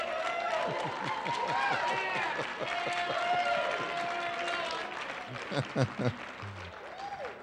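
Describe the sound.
A crowd applauds steadily while many voices cheer and whoop, a dense, lively roar that holds for several seconds and ends in a few louder shouts.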